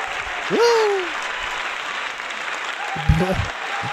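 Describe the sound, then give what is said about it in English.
Steady applause fills the whole clip as a dense, even crackle of clapping, with a rising whoop-like vocal cry near the start and a brief voice breaking through near the end. “Can I get an applause or?”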